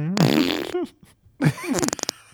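Two loud, close fart sounds: a long buzzing blast, a short pause, then a second raspy one that breaks into a quick run of sputtering pops at the end.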